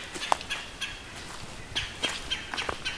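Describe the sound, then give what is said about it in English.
A red-bellied woodpecker calls loudly, giving a series of short, rough calls, irregularly spaced, over a soft outdoor background with no talking. “White breast nuthatch here, and this red-bellied woodpecker.”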